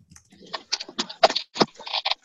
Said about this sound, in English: I can hear you typing